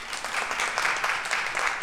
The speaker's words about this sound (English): Clap if you've been here all three Sundays.